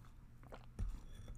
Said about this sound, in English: Let me take another sip of my Vermentino, okay?